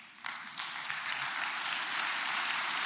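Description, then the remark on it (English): A crowd stands and breaks into sustained applause, many hands clapping at once in a dense, steady wash of sound that swells quickly and holds at a constant loud level. “They have literally gone from a wheelchair to a cane to walking, and I want you all to take the opportunity to stand and give them a round of applause.”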